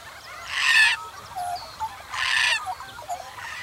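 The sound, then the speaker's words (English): Two loud, harsh bird cries ring out about a second and a half apart, with a few softer chirps in between against a quiet outdoor background, coming from one of some big old gum trees at the bottom of a hill; the bird is black and white and very common. “There's a very unique cry coming from one of those trees.”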